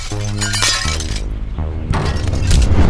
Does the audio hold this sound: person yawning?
no